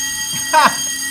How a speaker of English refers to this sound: Yeah, it does that. Dinner time. Yeah, dinner time. That is a bell. That is a bell.